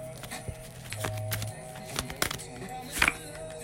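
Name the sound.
shuffling tarot cards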